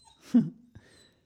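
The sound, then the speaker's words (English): A puppy lets out one short whine that trails off quickly, followed by a soft knock and then near silence. No one speaks. “Can you hear my whining puppy?”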